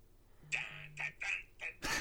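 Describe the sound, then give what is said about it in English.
A phone's text notification tone goes off: a quick run of four bright, chirpy electronic beeps, fairly loud, ending in a short burst of noisy hiss. “Why the fuck is your phone not muted for this show?”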